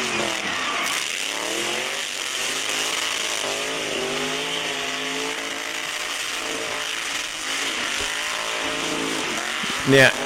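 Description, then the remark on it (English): A modified Mini car's engine drones loudly and steadily, its pitch rising and falling through repeated revs as it drives, with a brief louder burst near the end. “Look at what they did to this Mini.”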